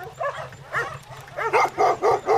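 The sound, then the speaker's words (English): Dogs barking in a quick series of sharp barks that grow louder and come faster toward the end, with a low steady hum underneath. “Another day or two, the dogs.”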